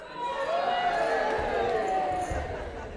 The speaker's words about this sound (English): So let's start up this end, and we'll cheer Hosanna and cheer as loud as we can. A bit of a Mexican wave. Are we ready? So we'll start here, no pressure, you guys. Ready, steady, and we'll go all the way that way. Ready, steady, go!